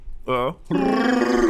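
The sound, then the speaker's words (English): A person imitates the growling, roaring howl of Chewbacca: a short guttural burst, a brief pause, then a longer, rougher sustained cry, loud, with no other talk. “Let out a howl for him.”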